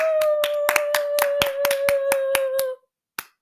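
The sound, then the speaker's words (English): Sharp, fairly regular applause runs for under three seconds over a steady, whistle-like held tone. Both stop together, and after a brief silence one person adds a single deliberate last clap, demonstrating throwing in one extra clap after everyone else has stopped applauding. “So, after everyone stops applauding, you just have to do a random clap.”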